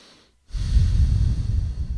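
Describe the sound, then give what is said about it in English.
After a brief silence, someone draws a long, deep breath in through the nose, loud, with a steady rushing airflow that lasts about a second and a half. “Let's all do a deep breath together. Those are good. Breathing through the nose, by the way.”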